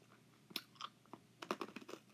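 Crisp crunching of hard sour candy being chewed, a handful of sharp irregular cracks and bites clustering toward the end, fairly quiet and with no one talking.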